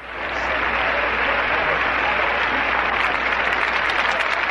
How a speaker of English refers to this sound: That's right. The crowd has applauded because you are right.